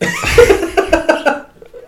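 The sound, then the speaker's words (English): A quick run of raspy coughs in a house, about four or five short bursts in a row, loud, trailing off into quiet with a faint murmur at the end. “Man, I hear coughing in my house.”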